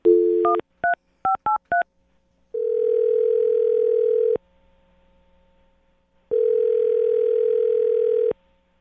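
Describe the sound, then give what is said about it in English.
A quick run of touch-tone dialing beeps as a woman's phone number is dialed, then two long, steady ringback tones with a pause between them, clear, like a phone call ringing through. No one speaks. “All right, I'm gonna dial her phone number right now.”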